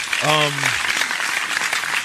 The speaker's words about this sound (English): So I clap for myself. Fuck that. I clap for my damn self. Pat myself on the back.